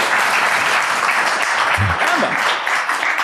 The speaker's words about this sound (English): Canva, yeah, well done. Round of applause for Canva. Come on.